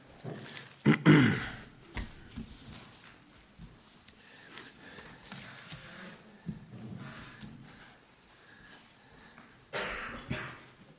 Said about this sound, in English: Yeah, I've had a residual cough from a cold or something that I had a couple of weeks ago. The cough, you know, it just hangs around. It's been better, but excuse me for now and then having to vent.